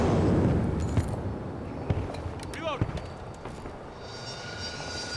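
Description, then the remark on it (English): An enemy air-support jet roars low and close overhead, its deep rumble loudest at the start and then easing off, with a few sharp thuds and brief voice-like sounds in the mix. “That jet is so close, Jesus.”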